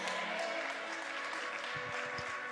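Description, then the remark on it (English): A crowd claps steadily, a dense, even wash of many hands at constant loudness throughout, with faint voices and a low tone underneath near the end. “When you clap and when you get excited, you are celebrating life.”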